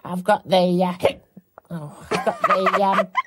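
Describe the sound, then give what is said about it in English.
A voice lets out a few sharp hiccups, short jerky catches breaking up strained, moaning vocal sounds, with a brief pause in the middle. “I've got the hiccups.”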